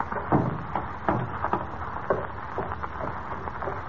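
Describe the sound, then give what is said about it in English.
A door is pushed shut, then a key left in the door rattles and turns in the lock, locking someone inside, in an abandoned skyscraper; a run of sharp metallic clicks and knocks with no voices. “Huh, see, there's a key in the door. Locking you in will give me enough time to get away.”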